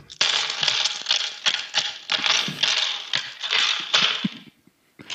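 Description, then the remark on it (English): A voice imitates Riverdance tap-dancing steps: a rapid, dense flurry of sharp clicks and scrapes for about four seconds, loud and hissy with brief accents, then it stops abruptly. “All right, I want to hear your river dance, and go!”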